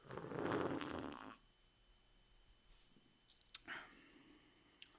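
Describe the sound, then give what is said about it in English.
A loud slurping sip of Great Lakes Brewery Christmas Ale, an ale brewed with spices and honey, lasts just over a second, followed by near silence broken by a few faint clicks. “And I'm going to take a big sip right now.”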